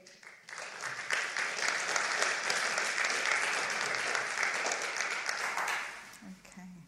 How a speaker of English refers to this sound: Thank you, everybody. Thank you for the round of applause, even before I've said anything. see if I get the same at the end.